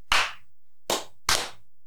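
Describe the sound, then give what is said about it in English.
Three loud, sharp hand claps, irregularly spaced with a longer gap after the first, each snapping and fading quickly. No voices or cheering are audible. “Stand up and clap and cheer around.”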